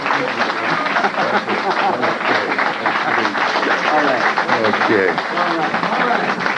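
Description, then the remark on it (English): Sustained audience applause for Dr. Amos Wilson at African Echoes fills the whole stretch, a dense, steady wash of many hands clapping at once, with a few voices murmuring and calling out underneath. “Everybody give Brother Amos Wilson a round of applause.”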